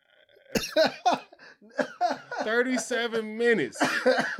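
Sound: coughing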